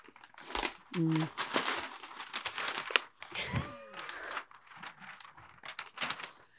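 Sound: wrapping paper crinkling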